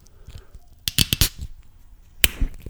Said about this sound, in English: On that note, let's leave with the fresh sound of a crack of a soda water. Huh? A bit of ASMR.